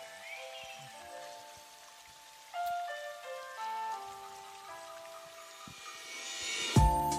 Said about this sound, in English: Let me pour up in there. I try to pour it while the water's running so y'all won't hear it. But I announced it, so. Doesn't matter, right?